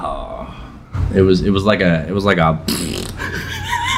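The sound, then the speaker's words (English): A voice imitates a man's loud, non-smelly fart heard during a movie: a buzzy, wobbling vocal blurt lasting about a second and a half, then a rush of breathy noise as it trails off. “give a little sound of what that fart sounded like”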